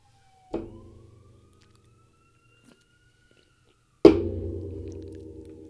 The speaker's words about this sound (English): I was like, what is that noise? It's a police siren. And pause.